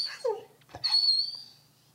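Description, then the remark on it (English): A dog whimpers in a house in short, high-pitched whines, one brief falling cry followed by a longer thin whine that fades out, with no talking. “Go to literally anywhere else in the house. And be noisy, and it's fine. Dog, please.”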